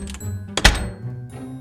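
A door swings shut on its own, landing with one heavy, solid thunk that rings out briefly over a low, steady hum.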